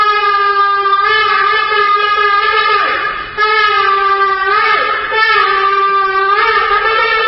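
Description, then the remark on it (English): A shofar, a ram's horn, blown at the St. Regis Hotel in Abu Dhabi to signal the start of talks between an Israeli delegation and UAE negotiators, in long, loud, brassy blasts, its steady buzzing tone broken only by two brief breaths before sounding again. No voices are heard. “The sound of the shofar, a ram's horn, at the St. Regis Hotel in Abu Dhabi was the signal for the beginning for the talks as the Israeli delegation met with UAE negotiators.”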